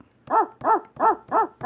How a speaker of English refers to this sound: We can have this dog barking in the background.